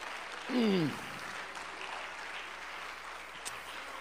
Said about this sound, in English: Give the Lord a hand clap of thanksgiving for that word.